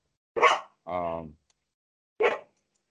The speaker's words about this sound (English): Got neighbors. Neighbor dog is coming. The local dog being very territorial about it. Sorry about that.